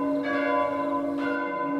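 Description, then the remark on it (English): Church bells ring out with a rich, sustained tone, a fresh strike blooming around the middle over the lingering hum of earlier peals, moderately loud and resonant. “he hears the church bells ringing.”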